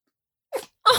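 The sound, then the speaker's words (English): A single sneeze: a brief rising breath is followed a moment later by a loud, explosive, hissing burst, with silence before it and no talking. “Bless you.”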